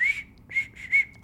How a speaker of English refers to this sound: it's because, also, how do you whistle? This is how I whistle.